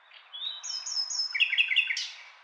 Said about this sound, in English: If you live where there are nightingales, even if it's the south of England or another country, I hope you're able to recognise them and enjoy their beautiful song.